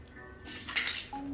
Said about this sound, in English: Shake it. I've had a lot of practice. And pour it into your Moscow Mule cup.